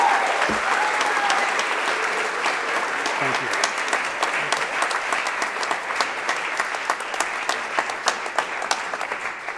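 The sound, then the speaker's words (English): Sustained applause from a large audience celebrating athletes at an awards ceremony, a dense wash of clapping that holds steady throughout, with sharper individual claps standing out toward the end. “Give yourselves another round of applause.”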